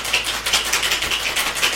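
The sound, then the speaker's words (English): Ice rattles inside a cocktail shaker holding tea and lemon juice, in quick, steady pulses, about six or seven bright, clattery shakes as a drink is mixed, with no voices over them. “It's going to shake. Get it, do it tight. It's going to spray everywhere.”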